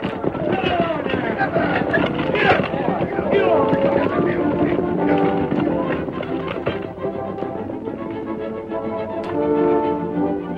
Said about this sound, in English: All right, folks. Whip up the horses. Keep going straight ahead. We're making for the hill. Get up there. Come on. Get up. Get up there.